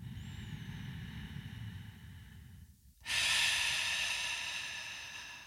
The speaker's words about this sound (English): So if you have your favorite essential oil on hand, bring them out. Drop a few drops into the palm of your hands. Cup your hands around your mouth and nose and inhale, breathing deeply for as long as needed.